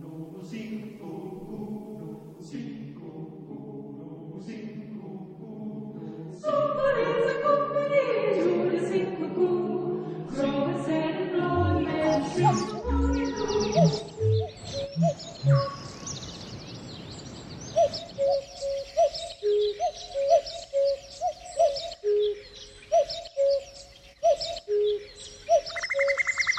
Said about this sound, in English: So indelibly, that was Cuckoo, and before that, Skylark.